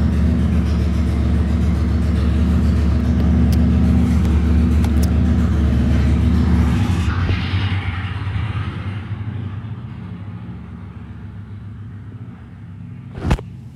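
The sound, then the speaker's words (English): A loud motorcycle roars past outside, its deep engine rumble filling the first half before gradually fading away, with a short sharp click near the end. “My apologies, that is a loud motorcycle.”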